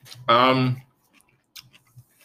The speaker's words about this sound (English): Okay, I'm not eating anything anymore. I hope for the listener's sake that hearing me chew and talk doesn't suck. I'm sorry.